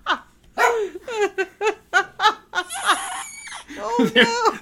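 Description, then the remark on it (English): A female dog barks repeatedly in quick, uneven bursts, about eight or nine sharp yaps, fairly loud, with a brief noisy scuffle partway through. “We got her barking over there.”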